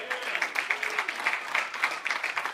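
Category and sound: crowd, audience cheering and applause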